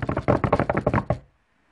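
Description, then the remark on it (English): A quick, loud drum roll tapped out by hand on a tabletop, a rapid run of about a dozen sharp knocks lasting just over a second before stopping abruptly into silence. “Drum roll, please.”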